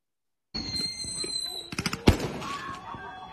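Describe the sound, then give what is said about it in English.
Fireworks going off: a high whistling tone, then a quick burst of sharp crackling pops capped by one louder bang, over a busy, murmuring background. “This motherfucker shooting fireworks at...”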